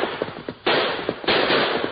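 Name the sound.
gunshot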